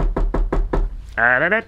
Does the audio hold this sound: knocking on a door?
yes